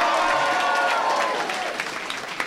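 An audience screams and shouts loudly and continuously to vote for a comedian in a contest, a dense wash of high-pitched voices and cheers that eases off slightly toward the end.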